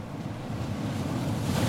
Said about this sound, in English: A big wave came in. Peter and Molasses got tumbled in the surf.